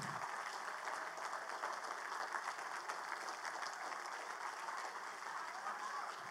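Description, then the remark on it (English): A large, standing crowd claps steadily and densely for several seconds to cheer on elementary school children as they come in, a constant wash of applause with scattered shouts and cheers mixed in, holding an even loudness throughout. “And I want you guys to stand up and I want you to give them a hand and cheer them on.”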